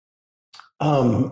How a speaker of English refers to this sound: I have to sneeze.